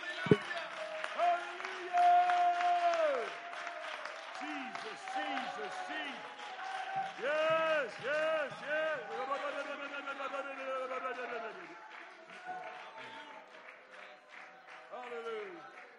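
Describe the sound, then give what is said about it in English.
An audience claps their hands in a steady patter during a sermon, beneath loud, sustained pitched tones, like voices or an organ holding and sliding between notes. “Somebody clap your hands one more time and magnify the name that's above every name.”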